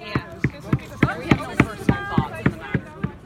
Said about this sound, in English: We set up on the lawn outside a little tent. The group unloads the plywood and lays it on the freshly cut grass. They start hammering.